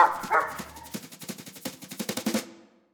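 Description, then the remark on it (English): A dog barks once, then lets out a rapid, rhythmic string of sharp yapping barks that grow a little louder before cutting off abruptly, as the dog Lazarus gets caught in a dog catcher's net in San Francisco. No voices. “It's not clear how Bummer escaped, but I'd like to picture the two of them running away and Bummer peeling out around the side of a building into an alley, just as Lazarus gets caught up in the dog catcher's net.”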